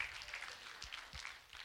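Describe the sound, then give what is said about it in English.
A crowd claps their hands together in a dense, continuous patter of many overlapping claps, steady, with no clear rhythm and no talking, giving a hand clap for Jesus during a testimony. “Give him a hand clap. Give Jesus a hand clap.”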